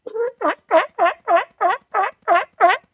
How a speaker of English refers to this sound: It was a sea lion. Oh, it's a sea lion. It's a sea lion.